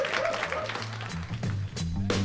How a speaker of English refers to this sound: Big round of applause for everybody you guys saw tonight. It's a pretty good show, right?